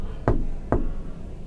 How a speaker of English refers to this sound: Then she heard another knock at the door.